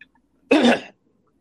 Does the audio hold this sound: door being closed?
no